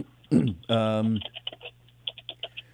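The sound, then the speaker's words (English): A brief voiced sound, then a burst of quick, sharp keystrokes clattering on a computer keyboard, about a dozen clicks in an uneven rhythm, fairly loud. “And while I'm typing really loud, I don't normally try.”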